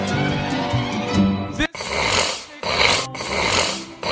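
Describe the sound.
A voice imitates a pained, raspy cough: a long strained groan breaks into several harsh, hacking bursts with brief silent gaps between them.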